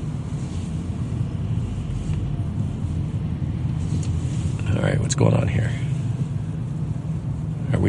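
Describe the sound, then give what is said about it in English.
Steady low engine rumble from inside a moving car in city traffic, with road noise droning throughout and a man speaking briefly over it near the middle. “Oh, I never know with the traffic in this city.”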